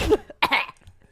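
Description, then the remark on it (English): Two sharp coughs in quick succession, the second slightly louder and raspier, followed by a brief quiet breathy tail. “all of a sudden. Hi. Her vagina coughs.”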